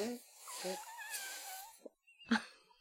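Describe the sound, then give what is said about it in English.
An arm fart made by pressing a hand against the arm, a squeaky, wavering tone that slides up and down for over a second, followed by a couple of short sputtering bursts. “Well, not to brag, but I musically arm fart a lot.”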